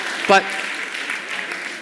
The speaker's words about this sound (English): And why is it only people over 50 who are clapping right now? Okay.